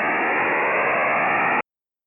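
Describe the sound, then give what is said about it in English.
A dense, steady burst of hissing, digitally encrypted data transmission over radio, loud and unbroken for about a second and a half before cutting off abruptly into silence. “But there's a ton of signals like that you can find that are some sort of encrypted data.”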